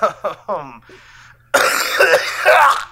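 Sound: coughing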